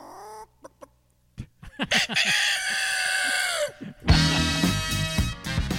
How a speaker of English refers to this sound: And now we're gonna end our show usually with an instrumental or a comedy song, and we got a comedy song coming up